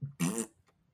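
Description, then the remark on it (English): A short, loud, buzzy blast like a fart or raspberry, lasting about a third of a second, followed by a faint click and quiet; no talking. “No, you have to cut it off after the fart sound.”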